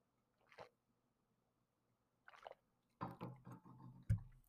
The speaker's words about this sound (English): That being said, diving on into our story more so, and let me get a little swiggity swig here.